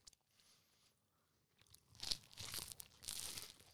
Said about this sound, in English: The bread itself. Your crunch wasn't as loud. The bread itself is softer on this one. Mm-hmm. All the way through. Your crunch was nowhere near.